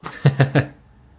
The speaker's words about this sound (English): Let me clear my throat.